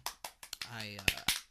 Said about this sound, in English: What clap was that? I got the shade of my. It looked more like you're swatting a fly.